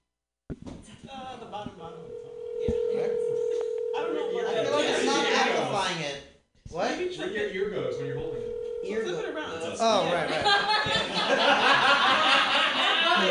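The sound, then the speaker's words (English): A steady telephone dial tone hums for a few seconds, breaks off, then returns briefly with keypad presses as Seth Rogen's phone number is dialed on the Mutiny Radio Show, all under lively overlapping voices and laughter. “Who's the one with Seth Rogen's phone number?”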